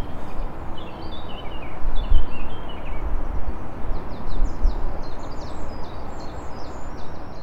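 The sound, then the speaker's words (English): A British garden bird sings in quick bursts of high, sweeping chirps, repeating throughout over a steady rumble of outdoor background noise in an urban setting, with no one talking. “They're traditional British garden bird, really.”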